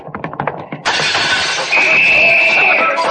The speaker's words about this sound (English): That big window in front, Logan? Yeah, watch out for flying glass, Miss Williams. Yeah, my head's down, Captain. Here goes.